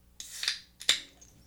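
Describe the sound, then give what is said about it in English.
A nitro Guinness can is cracked open: two sharp, hissy bursts of escaping gas about half a second apart, followed by a faint, thin fizz of little bubbles trailing off. No one speaks. “Oh, it was a little sizzle at the end. I like that. That's a Guinness. Little bubbles.”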